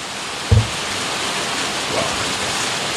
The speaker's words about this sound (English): The rain, she's coming down. Let me just close that door because it's mostly coming from the breezeway.